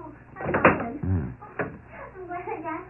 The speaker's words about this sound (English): There's another one. Open the door a crack.